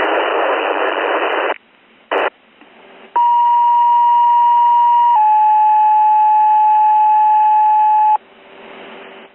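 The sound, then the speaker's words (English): A burst of radio static gives way to two long, steady electronic tones, a higher one for about two seconds and then a slightly lower one for about three, before the hiss returns: Provincetown Fire dispatch alert tones for a reported structure fire on Atkins Mayo Road. “Reported structure fire, 76 Atkins Mayo Road, standby for tones.”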